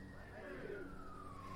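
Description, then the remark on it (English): An ambulance siren wails steadily, its tone slowly sliding downward over a low, continuous background rumble. “God, I just pray if that's an ambulance that whoever is at the other end is ministered to and healed.”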